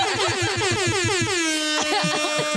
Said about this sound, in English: No, you found air horn, shit.